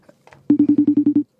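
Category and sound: signal or alarm, telephone dialing tones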